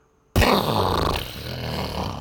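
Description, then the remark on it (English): A voice imitates a long, rough, low flatulent blast, likened to a cow farting, to show what a blowout sounds like. It starts abruptly after a brief silence and holds at a steady, loud level for about two seconds with a buzzing, growling texture. “Sounds like if a cow farted.”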